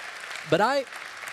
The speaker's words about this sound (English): So congratulations. Give yourselves a round of applause for being here.